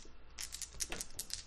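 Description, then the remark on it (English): A handful of dice rattle and clatter across a tabletop in a quick burst of small, sharp clicks, moderately loud, with no voices; the dice are rolled in a tabletop game and counted for successes. “1, 2, that is 2 successes, and then 3 more dice.”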